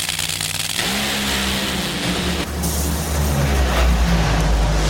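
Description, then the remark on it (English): Deafening roar of two Nitro Funny Car drag racing engines blasting at full throttle in a 2022 final round, a thick continuous rumble with rising whine as the cars tear down the track at over 320 miles an hour to the finish line, no voices. “I got a feeling nobody's saying sorry after this final round in Nitro Funny Car.”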